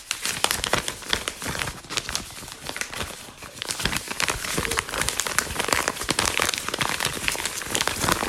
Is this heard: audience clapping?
no